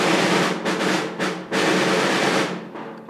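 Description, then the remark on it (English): A fast, rattling drum roll plays loudly and steadily, broken by a few brief pauses before it starts again. “We have drums.”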